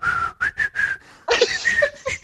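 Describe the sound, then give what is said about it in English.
A man attempts to whistle a tune: a few short, breathy notes with gaps between them, then a rougher, airy stretch where the pitch wobbles and the tone nearly breaks. “Is that him playing the flute? Yeah, he's trying to whistle.”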